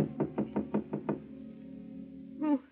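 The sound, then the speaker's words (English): Seven quick, evenly spaced knocks rap sharply on an apartment door, at night, followed after a short lull by a brief ringing tone. No one speaks. “Then on the next night, a knock at Gloria's apartment door.”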